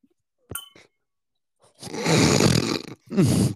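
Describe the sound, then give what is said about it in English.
A single bright clink of glasses raised in a cheers toast, with a brief ringing tone, followed by loud, gruff, drawn-out vocal noises in two bursts. “I didn't expect a glass ting.”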